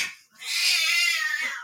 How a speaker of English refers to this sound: And my cats are apparently having a conversation right now.